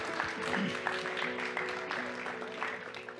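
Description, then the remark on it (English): An audience claps steadily in a dense, continuous patter of many hands, with a sustained instrumental tone humming underneath throughout. “Yeah, we can clap.”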